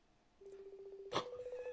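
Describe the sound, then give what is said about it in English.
The dialing tone of an Instagram call placed from a phone hums steadily, broken by a sharp click before it continues at a slightly higher, gently pulsing pitch. No one speaks over it. “You're calling him on Instagram, aren't you?”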